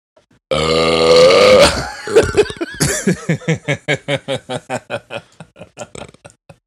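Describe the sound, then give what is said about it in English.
A loud, drawn-out belch rumbles for over a second, then breaks into a long run of rhythmic, pulsing laughter that gradually fades. “You know, the funniest part is that you put your whole body, your whole upper body into that belch.”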